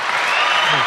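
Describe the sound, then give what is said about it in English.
A loud, dense applause sound effect of a crowd, a steady, bright wash of clapping filling the whole moment with no gaps. “At least you've got the right sound applause and not the...”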